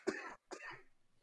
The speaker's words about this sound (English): You coughed.